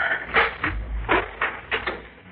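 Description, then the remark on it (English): The door of Garth Dragman's home being opened, heard as a series of wooden knocks and scrapes spaced through a couple of seconds over a low rumble, with no one talking. “Don't ring, Mrs. Dale. The door is open.”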